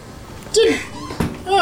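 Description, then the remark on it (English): A door gets kicked in: two sharp, heavy thuds about half a second apart, loud, with a voice-like vocal sound between and after them. “And shakes it out and kicks in the door.”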